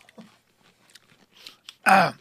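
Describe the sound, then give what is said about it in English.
Chewing with small wet clicks and smacks, ending in one loud, sharp crunch as a crisp pickle is bitten. “If you're listening to this, and you're like, a fucking podcast suck because I heard you chewing.”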